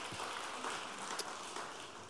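An audience applauding, a steady wash of many hands clapping together at moderate volume, filling the room evenly for a couple of seconds with no voices standing out.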